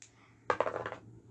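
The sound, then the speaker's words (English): Dice clatter briefly across a hard tabletop, a quick run of bright clicks and rattles lasting about half a second before settling into quiet, landing on a six. “I'll roll it for you.”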